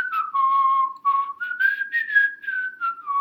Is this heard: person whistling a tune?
yes